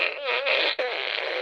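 A loud fart sound effect: a buzzy, wavering blast lasting over a second, briefly cut off midway before sputtering on again. No voices.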